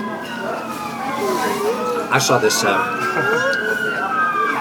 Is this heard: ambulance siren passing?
yes